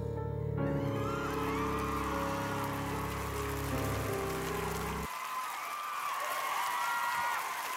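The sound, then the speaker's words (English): A canned applause track with children cheering, welcoming the hosts of a talk radio show, a dense steady clatter of clapping over high voices; a low droning tone sits under it for the first five seconds, then the crowd noise continues alone. “Good Lord, that's a long applause track.”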